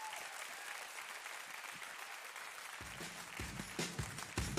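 Sustained audience applause at King's House, a dense wash of many hands clapping steadily, with heavier, louder claps and some low rumble building toward the end.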